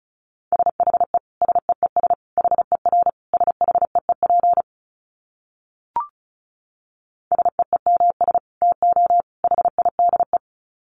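Rapid Morse code sent at 35 words per minute in a single steady mid-pitched tone, fast bursts of short dits and longer dahs grouped into clusters, pausing briefly around a faint click before resuming.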